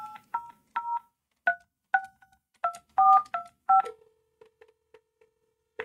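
A touch-tone phone dials the number of Telecheck: about ten quick, bright two-tone beeps in an uneven rhythm, followed by a few faint, lower beeps. No one speaks.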